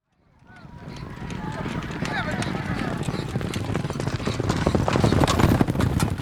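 Horse hooves clip-clop in a quick, steady rhythm that grows gradually louder, with a brief high whinny early on, all set against a busy background murmur.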